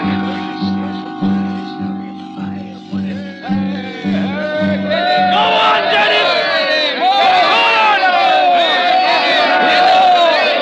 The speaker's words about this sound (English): He's speaking tonight. A meeting in the square. He's speaking to the crowd.